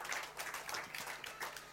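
A crowd applauds steadily to show gratitude to some men seated there, many hands clapping at once in a dense, crackling wash that holds without a break for the whole stretch, with no talking over it.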